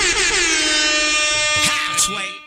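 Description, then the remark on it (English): A loud, sustained air horn blast with a rich stack of steady tones holds for about two seconds, briefly joined by overlapping voices before it cuts off. “Can I get an air horn?”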